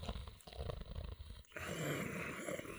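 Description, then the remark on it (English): A large beast snores loudly, a deep throaty rumble followed by a long, rasping breath, with no voices present. “Look at that big beastly thing snoring away.”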